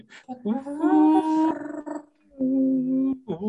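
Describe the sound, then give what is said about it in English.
A person's voice imitates Gizmo singing: two drawn-out, howl-like notes, the first rising and wavering, the second held steady at a mid pitch, followed by a brief breathy sound. “But the thing that always does stand out is that noise he makes when you hear him singing.”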